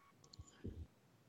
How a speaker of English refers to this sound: Sorry, …, you cut out there.